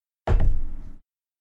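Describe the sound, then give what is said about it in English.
A die is rolled onto a table for a first arrow shot in a game: a sudden clattering thump, then a brief rumbling tumble of small knocks that fades out in under a second. No voices. “I'm going to roll for my first arrow.”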